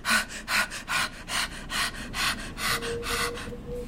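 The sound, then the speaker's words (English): Rapid, uneven breaths rush in and out, roughly a dozen airy puffs in quick succession with slight gasping and snorting quality, no talking. “Why are you just breathing erratically?”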